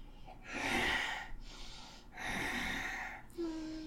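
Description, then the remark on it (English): A voice imitates a woman's heavy panting: three long, loud, breathy huffs in steady alternation, ending with a short voiced sound. “Through her open mouth, a steady panting issues forth.”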